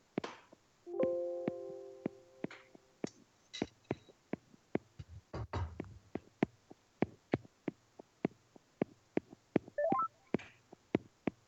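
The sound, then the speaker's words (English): Rapid, irregular tapping on a phone screen as someone looks through their phone, dozens of light clicks with short electronic tones mixed in early on and a brief rustle midway. No one speaks. “A lot of tapping going on.”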